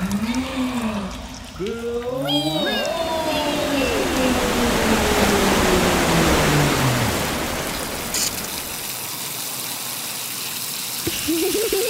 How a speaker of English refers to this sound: Hang on tight, you two. You're about to get blasted out of the belly of a whale.